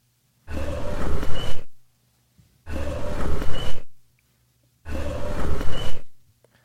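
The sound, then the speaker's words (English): An owl call: three loud, harsh, raspy bursts, each about a second long, separated by short silent gaps in an even rhythm; the owl was very close and sounded forceful. No one speaks. “I was able to pull one instance of the owl out.”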